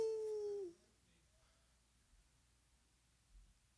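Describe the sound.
A person lets out a short, loud howl imitating a fox or coyote, a high sustained note that slides downward and cuts off after under a second, followed by near silence.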